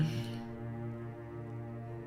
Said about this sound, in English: My God, did you hear that? That's my cat. She's just yelling at me now.